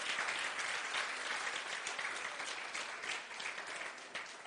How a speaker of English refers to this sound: Come on and give God a hand clap of praise.